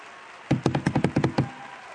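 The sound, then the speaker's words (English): After a prayer, an audience claps for the Lord before being seated, in a quick, steady rhythm: about eight sharp, loud claps in roughly one second, then the sound stops, with no talking. “Let's give the Lord a hand clap before you're seated.”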